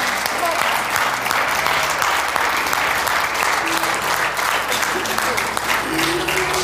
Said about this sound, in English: Come on up here really quick. Give them a hand as they come. And let me just pray for you. And I want you to clap like your mama's coming up here.